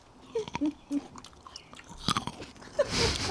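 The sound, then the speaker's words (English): Crunchy biting and chewing of grapes, with several sharp crisp bites followed by wet, irregular mastication sounds, loud, with no talking. “These grapes are so good. And we are eating some fantastic grapes.”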